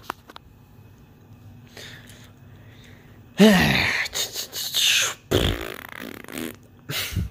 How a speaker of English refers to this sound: Made a little fart noise there. That's kind of funny.